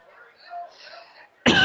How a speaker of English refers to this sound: Excuse me, this cough is driving me nuts.